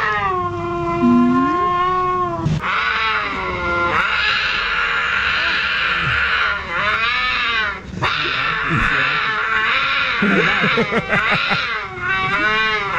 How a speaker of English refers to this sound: Any excuse I can get to play animal mating noises, I'm going to go with it. Here's a cougar.